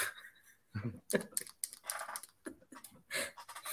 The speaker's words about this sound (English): Yeah, I'm sorry. That's my chair that's doing that.